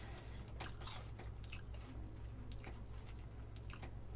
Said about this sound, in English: You still chewing?